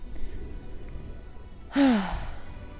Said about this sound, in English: Now he is passed out under my desk, drooling and snoring. He really is an awful house guest.